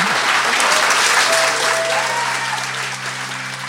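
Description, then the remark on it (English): A large audience claps steadily in a dense, sustained wave of applause, holding strong before tapering slightly toward the end. “With that, please give a massive round of applause”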